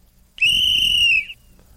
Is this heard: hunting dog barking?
no